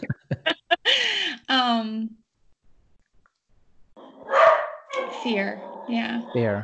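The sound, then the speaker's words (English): A pet dog lets out a quick burst of sharp barks followed by a couple of longer, drawn-out barks, then a pause before people start talking. “There goes my dog.”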